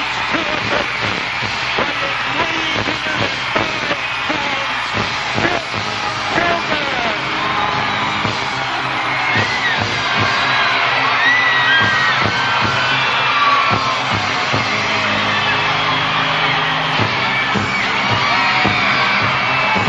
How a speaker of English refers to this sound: There he is in all his glory, capacity crowd giving him a standing ovation. The Hulkster has arrived. Well, I'm not giving him a standing ovation. Take a look at this jam-packed capacity crowd cheering on this tremendous human being.